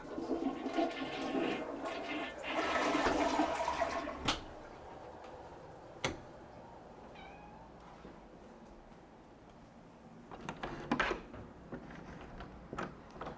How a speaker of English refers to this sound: Now we're going to give the toilet a nice flush, and that concludes the segment.